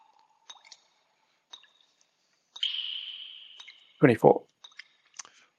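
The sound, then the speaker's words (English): Dice rolled for a persuasion check in a game: scattered sharp clicks, then a short rolling rattle across a hard surface, a few final taps as they settle, and a brief vocal sound in between. “So let me roll the dice and you can choose what she would need to not be persuaded.”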